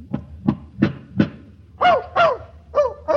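A dog named Fletcher, kept in a hotel room, gives four quick, sharp yapping barks in a short burst, following a run of four dull, evenly spaced thumps, all fairly loud with no talking.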